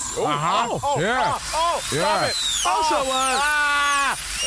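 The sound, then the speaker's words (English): A thin, steady dental-drill whine runs throughout in a dentist's chair, while a muffled, garbled voice rises and falls in wavering, mouth-full sounds over it, with a constant hiss of dental suction. “There is nothing more annoying than sitting in a dentist chair with all those suction sounds.”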